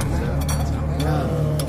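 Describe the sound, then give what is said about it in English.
Dinner-party glasses and cutlery clink a few times in short, bright taps over a steady murmur of people talking and a low hum, at a night-time dinner party of Carmine Falcone and rich socialites of Gotham. “Later that night at a dinner party, Carmine Falcone, along with the rich and greedy socialites of Gotham, discuss how Batman is keeping the honest cops busy.”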